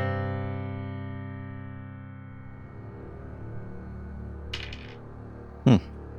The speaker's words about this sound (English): Rolling dice over there, I hear.